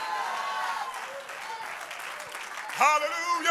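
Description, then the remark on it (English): An audience claps their hands unto the Lord in a steady, dense, continuous patter of many hands, with voices rising over it at the start and a louder voice breaking in near the end. “If you want to be known for that name, clap your hands unto the Lord.”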